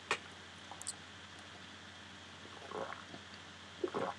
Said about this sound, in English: Oh my God. Why are you swallowing so loud, you fucking prick? That was disgusting.